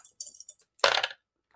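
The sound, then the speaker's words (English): Dice are rolled for a dex roll and land on 6: they clatter across a hard surface with a few quick, bright clicks, then a louder burst of rattling that stops abruptly. No one speaks. “Make a dex roll as you start trying to push your way through the crowd.”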